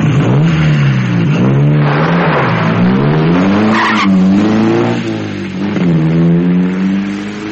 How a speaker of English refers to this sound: He should have waited until we got inside the car before driving off.